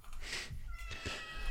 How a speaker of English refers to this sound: Her name is Margaret Atwood. Give me a second so I can grab my cat so she's not meowing all over the end of this.